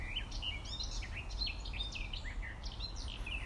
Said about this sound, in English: Grabbed a little time out of my day to make sure I got a walk in today. And I thought this bird song was too good to miss.